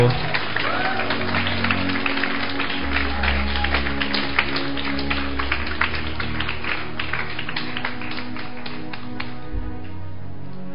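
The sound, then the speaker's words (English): An audience claps for Jesus at the last session of a teaching, steadily in a dense burst for about nine seconds before it thins out and stops, with a low sustained hum underneath. “I think you need to clap.”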